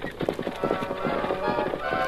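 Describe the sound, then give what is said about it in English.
Rapid, overlapping hoofbeats of two horses, Scout and Silver, galloping hard, pulling a rattling, rickety wagon carrying an injured marshal at full speed through town at night, in a steady driving rhythm, loud throughout. “In the dead of night, the wagon dashed through town”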